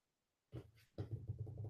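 Dogs bark excitedly in a quick, frantic run of overlapping barks that starts abruptly after a moment of quiet and keeps going, loud, with no one talking.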